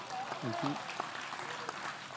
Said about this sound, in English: How about a round of applause for grandfathers?